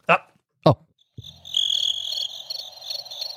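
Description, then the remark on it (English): A couple of brief voice fragments give way to a steady chorus of crickets chirping, a dense high-pitched trilling that carries on evenly for a few seconds, like a quiet night outdoors. “And on MTV, the network, not one mention. Crickets.”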